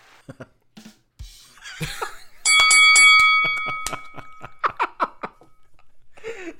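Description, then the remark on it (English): A bell rings out loudly as a last-call signal, a bright sustained clang lasting over a second before fading, with laughter and bits of chatter around it. “So that you heard the bell. That is last call.”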